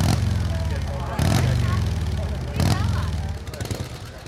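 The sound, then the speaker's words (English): Motorcycles ridden by a motorcycle club roar past, their engines rumbling loudly in a steady low drone, with a few sharp bursts of throttle as each bike goes by. “They're a motorcycle club”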